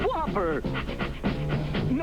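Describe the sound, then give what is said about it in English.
Several cartoon puppies in a dog pound pant and whimper excitedly in close succession, with high, wavering yelps layered over a steady low hum, loud and busy throughout. “this is actually Pound Puppies. They're all pumped to be in dog jail.”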